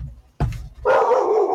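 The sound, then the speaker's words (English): A dog gives a sharp bark, then a longer, higher-pitched yelping bark that trails on. Both are loud, with no one talking. “And so are the dogs.”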